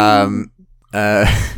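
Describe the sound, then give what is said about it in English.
A person imitates a ghostly owl hoot with two drawn-out, wavering vocal hoots separated by a short pause, fairly loud. “I'm a ghost owl.”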